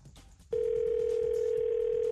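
After a brief moment of quiet background noise, a phone ringing tone starts and holds as a single steady, loud electronic hum right to the end, with no voices.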